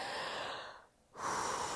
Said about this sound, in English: And so I'm just going to take you through as if I'm literally going to do my push-ups. So I start taking like some really big gasps, like